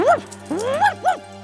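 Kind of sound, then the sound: animal, dog barking and whimpering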